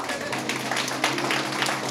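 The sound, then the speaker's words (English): An audience claps steadily for about two seconds, a dense, even patter of many hands at moderate loudness, with a low murmur of voices underneath. “So CBF has offered financial resources to Heartway, which deserves a hand clap.”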